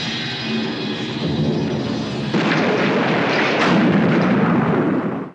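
A steady crackling sizzle builds for a couple of seconds, then gives way to a loud, rumbling explosion with a second burst, roaring on until it cuts off abruptly. It is Ben Burtt's sound effect of stormtroopers detonating a hatch, made with the Fox Thunderclap, a studio recording.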